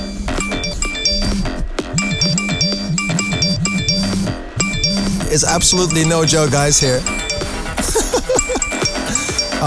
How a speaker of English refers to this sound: Someone is getting a text message.